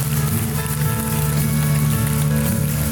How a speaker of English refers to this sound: Let's stand at all of our campuses in this room right now. Let's stand and give God a round of applause, because He's faithful. He's faithful. He's faithful.